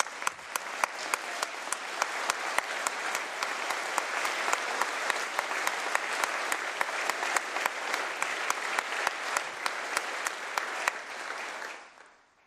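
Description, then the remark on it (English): Sustained applause from a sizable crowd for a student helped by the expanded MAP grant scholarship program, a dense steady wash of clapping with sharper individual claps standing out, holding strong for about eleven seconds before tapering off quickly at the end. “Please give a round of applause to a great family man and a hard worker”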